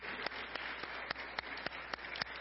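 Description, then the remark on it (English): A church audience applauds the firemen, a steady dense wash of many hands clapping with a few sharper claps standing out, fairly soft and even throughout with no voices over it. “But if we have any people in that area, we'd just like to give you applause.”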